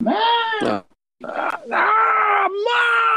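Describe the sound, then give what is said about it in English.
A loud, strained vocal scream in several drawn-out bursts, broken by a brief silence: a person voicing the scream of a character called Haggis, with no spoken words. “So you hear Haggis scream.”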